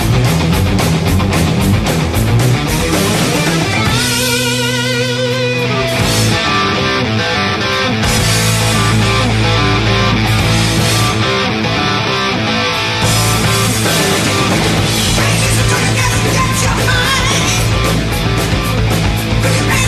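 A loud, dense heavy metal song from a 1982 album plays throughout as the intro of a craft beer show on radio station AM 970 The Answer, with distorted guitars and pounding drums filling the mix, a sustained wailing passage early on, and no voices talking over it.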